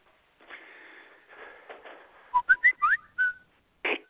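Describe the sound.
A person whistles a quick run of short, rising chirpy notes, imitating the alarm of a watch with multiple alarms, following a breathy hiss, then ending with a brief sharp puff of air.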